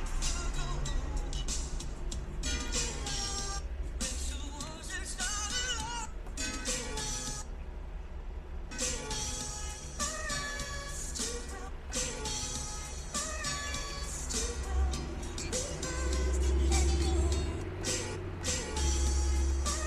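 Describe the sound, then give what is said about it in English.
A large bus rumbles outside with a deep, steady engine drone that swells louder near the end, along with squealing, hissing brake sounds over busy background noise. “It's a bus outside.”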